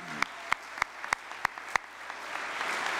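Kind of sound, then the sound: crowd, audience applause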